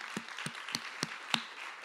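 An audience applauds a volunteer work crew who spent their day making the campus look beautiful, a dense wash of clapping with a few sharper claps standing out in a steady rhythm. The applause is moderately quiet and nobody speaks.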